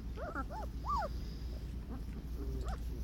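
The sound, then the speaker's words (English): Young Great Dane–Doberman mix puppies, from the dog Zayla and a Dober Wiesla, whimper in a cluster of thin, rising-and-falling squeals near the start while crawling in the yard outside, then another brief whine later, over a low, steady background hum. “She's like, get off my puppies.”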